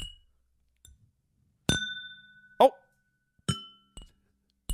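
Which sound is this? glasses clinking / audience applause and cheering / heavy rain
glasses clinking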